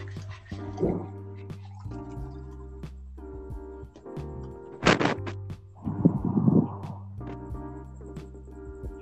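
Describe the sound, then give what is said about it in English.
Liquid sounds over a low steady hum: a brief sharp splash, then a longer gurgling stretch of water being poured and drunk, with a few small drips and clinks between. “Let me drink gamer girl water.”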